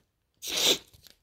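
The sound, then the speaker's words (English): A nasal spray squirts into the right nostril: one quick, airy hiss lasting under half a second, trailing off into a few faint sniffs and rustles. No one speaks. “More nasal spray. My right nostril.”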